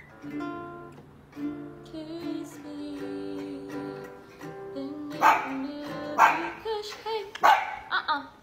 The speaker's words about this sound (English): No barking. No barking. Hey, sit. Sit.